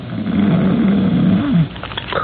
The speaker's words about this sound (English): From beyond the curtain and the other bed in the room, from the big, heavily muscled, early middle-aged man in it, comes a rhythmic and ear-shattering snore.